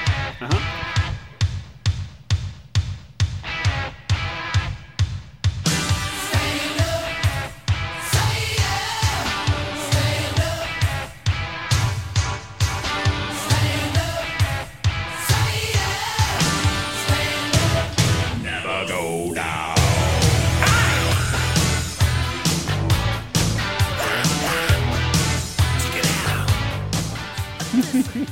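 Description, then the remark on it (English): A rock song intro opens with a steady, thumping kick drum on its own, then the full band crashes in with bright, splashy guitar and pounding drums, loud and continuous with no voices. “Very splashy musical intro. We got a little splashy guitar happening. The drums just going thump thump thump thump.”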